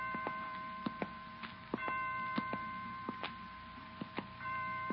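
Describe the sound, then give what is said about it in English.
Hospital clock chimes ring out with sustained bell-like tones, punctuated by a steady series of sharp, evenly spaced strikes marking 5 o'clock. Moderately loud, with no voices. “I didn't know the hospital had chimes.”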